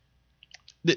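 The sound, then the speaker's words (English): Several quick, light computer mouse clicks while clicking for an article, followed by a louder, fuller burst of sound at the very end. “Hold on, I was clicking for an article, didn't realize it was a fucking page.”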